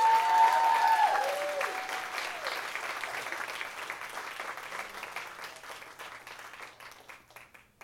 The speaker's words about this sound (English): Guys, big round of applause,